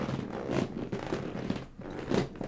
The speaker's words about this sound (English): That noise, it's not coming from my asshole. It's coming from my big old creaky chair that I got at Costco.